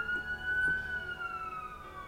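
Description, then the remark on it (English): A siren sounds on its own, holding a steady, piercing high tone that sags slightly in pitch, moderately loud with a faint low rumble underneath and no voices. “After Everybody Drink. Sirens.”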